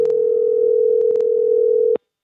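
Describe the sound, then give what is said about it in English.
A single steady telephone ringback tone hums for about two seconds on an outgoing call to the Saint-Sulpice Seminary in Old Montreal, with a few faint clicks over it, then cuts off abruptly into silence. “And they have a phone number, so I gave them a call.”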